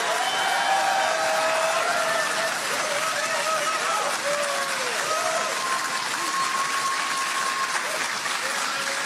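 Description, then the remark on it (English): Loud, sustained applause from a large crowd in Iowa giving a standing ovation after a political speech, a dense steady wash of clapping with faint cheers and whistles rising above it. “Big standing ovation there from his crowd.”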